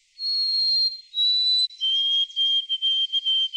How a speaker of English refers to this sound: And here is the new pop song that all these birds are singing.